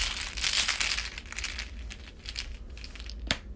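Papery riffling of a card game's exploration deck being shuffled, a dense crackly rush that thins into scattered flicks, ending with one sharp snap.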